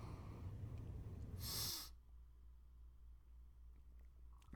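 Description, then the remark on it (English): Breathy sniffing of a beer with buttery crust, vanilla and roasted pecan aromas, ending in one sharp airy inhale, followed by quiet sipping and faint mouth sounds over a low background hum. “So let's take a sniff and then we'll take a drink.”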